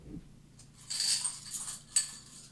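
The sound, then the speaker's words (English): Small metal game coins clink and rattle together in a brief handful, a cluster of bright jingling taps with a sharper clink near the end, fairly quiet with no talking. “We'll have these coins here, and these are sort of tokens that you can challenge aspects of people's stories.”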